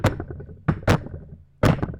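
knocking on a table

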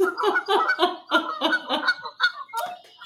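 canada geese honking

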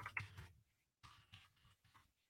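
loud computer keyboard typing

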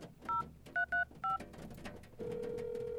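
telephone number being dialed

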